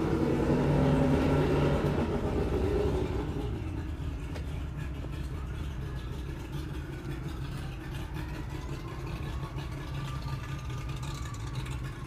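vehicle, motorcycle engine starting up

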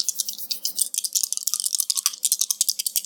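household object, dice being rolled

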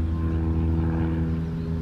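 vehicle, airplane flying overhead

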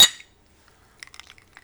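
household object, glasses clinking

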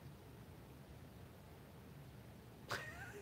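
animal, cat meowing

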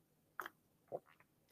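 food or drink, sipping hot tea

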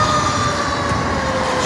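vehicle, fire truck siren passing

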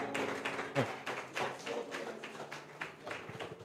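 crowd, audience clapping

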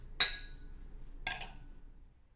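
household object, wine glasses clinking

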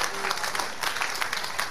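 crowd, audience clapping and applauding

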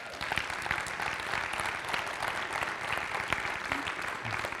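crowd, audience applause

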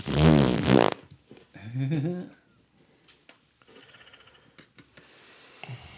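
human body sound, farting sounds

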